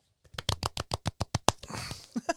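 A soft golf clap: about a dozen light, evenly spaced claps in a quick steady rhythm, then a brief rustly hiss and a few final scattered claps, with no talking.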